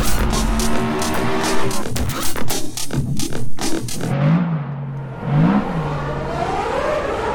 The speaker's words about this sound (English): Just a little proof that we haven't come all this way to Spa without getting close to some F1 cars. There goes one of the Toro Rossos. The other one, followed by a Force India, exiting the pit lane for the second part of qualifying here today.